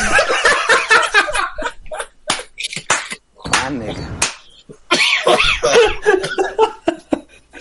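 Repeated bursts of coughing tangled with breathy laughter, sharp and uneven, with a brief gap before another loud fit of coughs and wheezy laughs.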